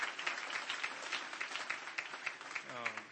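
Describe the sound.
An audience at a youth rally applauds the people who made the rally possible, a dense, bright crackle of many hands clapping at once, with a voice beginning to rise over the clapping near the end.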